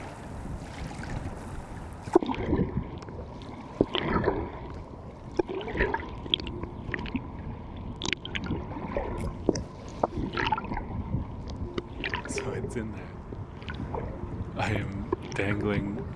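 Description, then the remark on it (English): Muffled underwater sound of the Hudson River, picked up by recording equipment lowered over the edge to just an inch below the surface: a steady low rush and rumble dotted with irregular clicks, knocks and bubbly pops, continuing throughout at a moderate level. “Most of the recording equipment I own off up here into the Hudson River. I could just barely reach. It's just an inch under.”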